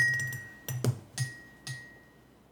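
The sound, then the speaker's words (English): Glasses clink together in a toast, three bright, ringing taps spaced a moment apart, the first blending into a brief rustle. Fairly quiet, with a faint tone lingering between clinks and no voices. “Well, cheers, everyone. Cheers. Cheers.”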